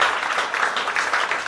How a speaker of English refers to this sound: And we go around the table with the previous guests who are coming back on stage now. Give them back a round of applause.